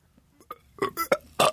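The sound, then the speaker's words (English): A deliberate, forced burp: a few soft grunts build into a series of loud, croaky belching pulses over about a second, with no talking. “I might be able to work up a burp and actually.”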